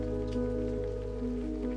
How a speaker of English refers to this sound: She wrung as much of the water as she could from her mousy brown hair, and wondered how long the shower might last.